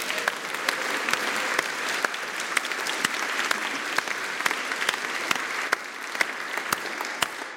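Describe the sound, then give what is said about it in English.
A crowd at an Easter service breaks into steady applause for Jesus, dense overlapping claps with a few sharp, louder ones standing out, sustained at an even level for several seconds with no speech over it. “I think that's worthy of a round of applause, is it not, for Jesus?”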